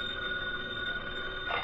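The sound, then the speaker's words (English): A telephone bell rings in one continuous, steady jangle, fairly loud, with a faint hiss underneath and no one speaking: a phone call coming in for Britt Reed. “It was a little more than an hour later when Britt Reed received another phone call.”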